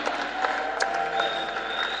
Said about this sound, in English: Are you sure it's clapping? You are clapping. Are you sure?